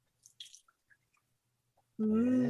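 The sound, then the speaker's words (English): A few soft splashy bursts and faint drips, then black beer pours steadily and loudly into a glass, its tone rising as the glass fills. “And the pour.”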